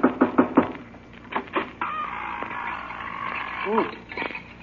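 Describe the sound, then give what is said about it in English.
Four quick, solid knocks on a door in a steady rhythm, a couple more softer raps shortly after, then a long wavering, creaky tone fills the rest of the moment. “if we're going in to get the Wicked Witch, I better knock on the door”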